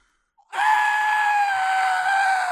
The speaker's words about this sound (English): The next morning, I put them back in, and I've never yelled so loud in my life. It hurt like a motherfucker. So obviously, I ripped them out. Let's get a snippet of that scream, but back up from the mic.